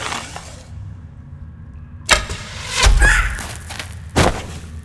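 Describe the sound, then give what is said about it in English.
A bowstring is drawn back quietly, then released with a sharp snap and a whooshing arrow, followed by heavy thuds of impact. Fairly loud, with no voices. An elf archer shoots at a goblin scout in the darkness. “Drawing back, the tension in his bow tightens.”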